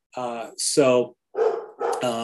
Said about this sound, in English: I'm sorry. I get distracted by my dog barking.